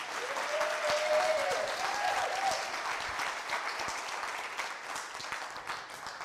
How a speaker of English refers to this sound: Can you give them a great big round of applause?